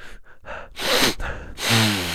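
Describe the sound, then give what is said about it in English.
A few quick sniffs build into two sharp, drawn-out inhales through the nose as eucalyptus oil is put up both nostrils, loud, with no talking. “And when you put, I'm gonna put this eucalyptus up both nostrils. Here we go.”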